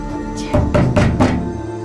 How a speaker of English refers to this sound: The door shudders. Heavy blows. Hard, violent kicks.